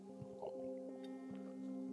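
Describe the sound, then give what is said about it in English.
Soft swallowing and sloshing of water as someone drinks, with a few small wet squishes over a steady low electrical hum; quiet overall, no talking. “And I need a drink.”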